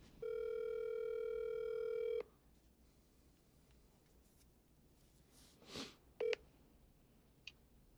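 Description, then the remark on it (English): A steady, buzzy telephone tone holds for about two seconds, then cuts off; after a quiet stretch comes a soft rustle and one short electronic beep, with no one speaking, as a phone call is placed during a hurricane. “I'm gonna give my mom another call, see what she's talking about.”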